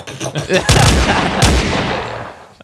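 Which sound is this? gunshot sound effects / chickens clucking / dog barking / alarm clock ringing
gunshot sound effects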